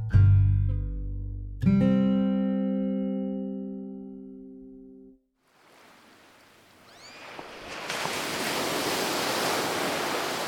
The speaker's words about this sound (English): We made it to the ocean. You hear it.